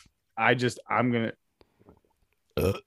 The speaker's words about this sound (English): What the fuck? You burped and your light turned off.